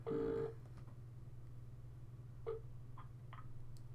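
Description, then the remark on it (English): A telephone ringing tone on an outgoing call to a Chinese takeaway gives one short, buzzy burst at the start, then falls away to a steady low line hum with a few faint clicks and no voices. “Let's hope it doesn't go straight to voicemail. Oh, no, it's ringing.”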